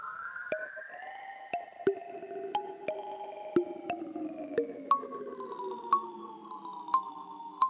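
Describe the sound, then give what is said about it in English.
Ghostly, smeared reverb from an Earthquaker Devices Afterneath guitar pedal as its drag knob is adjusted, with drifting tones that slowly bend downward while sharp repeating pings ring out at a steady pace. It is moderately loud, with no talking. “And I'm going to mess with the drag knob on this afterneath from Earthquaker Devices. It's kind of a ghostly reverb.”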